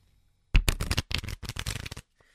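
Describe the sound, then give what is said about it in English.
A deck of playing cards is shuffled: a rapid run of crisp, fluttering riffles lasting about a second and a half, with a brief pause midway, then quiet. “All right, the cards are perfectly shuffled, you see?”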